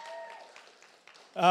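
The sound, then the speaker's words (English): A short stretch of soft, scattered audience applause at the SOMA church's two-year anniversary, welcoming two women as new members, a steady patter of many hands, with faint talking underneath and a voice starting to speak loudly as it ends. “I don't know, obviously, yeah, you can clap for these folks if you want.”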